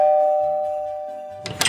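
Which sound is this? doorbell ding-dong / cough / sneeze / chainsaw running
doorbell ding-dong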